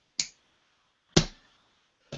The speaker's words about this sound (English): Let me flip my coin.